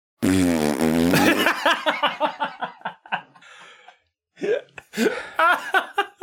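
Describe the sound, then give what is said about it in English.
A loud, buzzy fart noise blown with the mouth lasts about a second, then breaks into rapid, choppy bursts of laughter and snickering that trail off and return briefly. “Big farts to that.”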